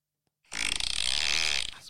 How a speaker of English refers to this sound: Has it got, like, in-app purchases? If you get bored of the 20 default farts, you can get some new ones. Let's have a look, actually. Pick a number between 1 and 20.